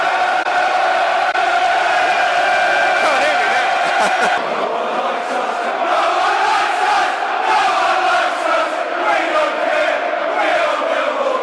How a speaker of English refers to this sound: It's got the crowd buzzing, I can tell you that much.